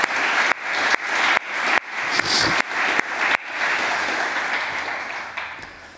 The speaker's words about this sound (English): So guys, if y'all don't mind giving them a round of applause.